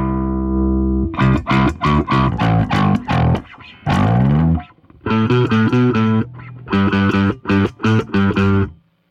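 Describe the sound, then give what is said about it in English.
Distorted electric guitar played loud through an overdrive pedal into a driven amp, with a sustained opening tone followed by bursts of choppy, rhythmic chords and short pauses, crunchy overdriven tone throughout, no voices. “I like it, but I like it with the amp distortion.”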